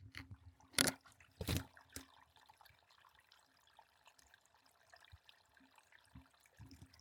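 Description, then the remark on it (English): Water trickles and gurgles steadily beneath a layer of crusty, slushy ice, recorded with the microphone near a hole in the ice, with a couple of louder splashy bursts early on before settling into a soft, continuous burble. “And there's holes in the ice in places where I can hear the water running underneath.”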